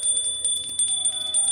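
A small hand bell rings continuously for a moment, its bright metallic tone shimmering with rapid, repeated strikes. It sounds clear, with no voices over it.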